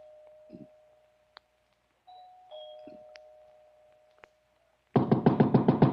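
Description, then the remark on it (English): The doorbell of Mr. Simon Andrews' big, unlit house, pressed at night from the front stairs, rings inside: two drawn-out, fading chime tones with a few sharp clicks between them, then a loud, harsh buzzing ring pulsing rapidly about seven times. No one speaks. “I walked up the front stairs, punched at the doorbell, and heard it ring inside.”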